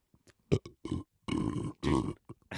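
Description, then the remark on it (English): A couple of loud, drawn-out belches rumble, each about half a second long, with a few short grunting bursts between them and no talking. “As soon as your wife comes into the room, you do some sort of burp.”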